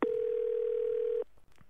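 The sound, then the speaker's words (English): A steady, loud electronic telephone tone before a voicemail from Prime Minister Malcolm Turnbull holds one mid pitch for just over a second, then cuts off, leaving faint background hiss before a brief click at the end. “So let's find out what's happening in Mal's voicemail.”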